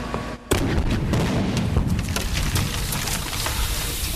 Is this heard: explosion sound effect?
yes